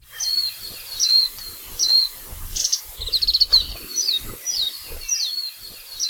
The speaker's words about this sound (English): The warbling white-eye, or majiro, is a non-native bird that was first introduced to Hawaii from Japan in 1929. It is now the most common bird in all of Hawaii, occurring just about everywhere.